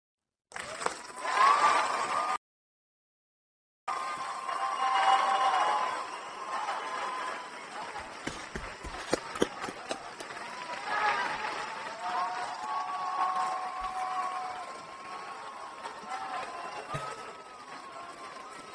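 A clapping sound effect plays steadily during an online meeting with technical difficulties but glitches, dropping out completely for about a second before resuming with stuttering bursts and warbling tones mixed into the noisy applause.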